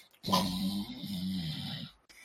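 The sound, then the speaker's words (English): A person makes one long, rumbling snore with their voice, a raspy, throaty drone lasting over a second, imitating a man snoring on his bar stool in a tavern. It is fairly loud, with no other talking. “And then he, like, starts snoring in his bar stool.”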